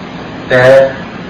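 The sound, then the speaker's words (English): A steady, even air conditioning hum fills the background from start to finish, briefly overlaid midway by a short louder tonal sound before the constant droning noise continues alone. “Please be aware of sound of air conditioning, birds singing outside.”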